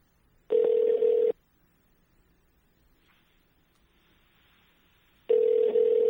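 An outgoing phone call to the speaker's father rings on the line: two loud, steady ringback tones about four seconds apart, with faint line hiss in the quiet gap between and no voices.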